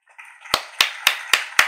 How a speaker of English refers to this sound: You know, I gotta get a hand clap, though.